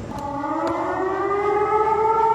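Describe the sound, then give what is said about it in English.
A loud emergency alert siren blares steadily across the UNC campus, its sustained tone slowly shifting in pitch as it wails continuously across open space, with no voices heard. “Sirens blaring across UNC campus. And it blares and it says, "Danger, get inside, dangerous person."”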